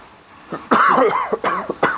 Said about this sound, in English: Nasty cough you've got there. Are you smoking too much? No, I'm not smoking enough.